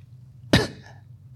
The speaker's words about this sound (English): Sorry, that cough was for City.